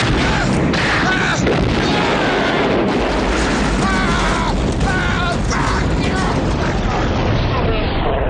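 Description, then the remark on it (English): A loud, dense barrage of gunfire and booming blasts as people shoot at a truck and its tires, ending in the truck exploding with a sustained roaring rumble. Indistinct voices are buried beneath the noise. “And then they start shooting at his truck, and they're shooting at the tires and all sort of stuff. But then they shoot the wrong thing, and the whole thing explodes.”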